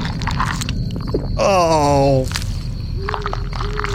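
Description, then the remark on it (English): Wet, crunching chewing and biting noises as a cannibal video game character, choosing to devour rather than search, eats a corpse, broken by a short, wavering groan in the middle, all over a steady low background hum. “Would you like to devour or search? Devour.”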